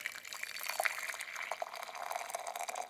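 Hot water pours onto a reused rooibos tea bag in a cup to refill it, a continuous bright splashing rush with small bubbling drips, fairly loud and unbroken for about three seconds with no talking.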